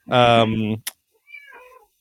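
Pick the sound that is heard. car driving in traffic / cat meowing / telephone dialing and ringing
cat meowing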